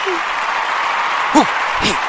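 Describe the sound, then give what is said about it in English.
Steady clapping fills the whole couple of seconds at a fairly even level, with a couple of short voiced whoops or shouts rising over it near the end. “I'm going to take it off and bring me in with a clap.”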